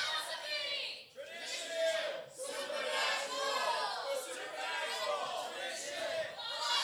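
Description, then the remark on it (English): An audience shouts out in several loud bursts, one group after another as each is pointed to and yells out its group name, with brief dips between each collective yell of many overlapping voices. “So as I point to you, yell out what group you are.”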